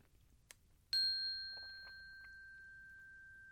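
A soft chime, rung during a moment of silence, strikes once after a faint tap, its clear high tone ringing steadily and slowly fading over several seconds.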